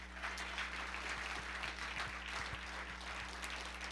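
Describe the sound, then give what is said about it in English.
An audience claps together in praise of the Lord in a dense, sustained burst of applause that fills the room evenly, with a low electrical hum running underneath and no one speaking. “Come on, give the Lord a hand clap of praise.”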